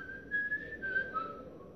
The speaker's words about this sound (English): You like your boss on your job to tell you how a good job you're doing. Huh? Then the rest of the day you whistling.